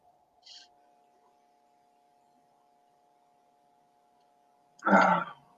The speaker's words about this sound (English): Here comes the yawns. Yeah, every time she does it, right, she just yawns like crazy after every time. Yes, it's very draining.